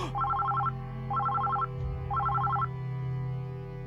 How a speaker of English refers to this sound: The ringing of your office phone cuts through your concentration and startles you.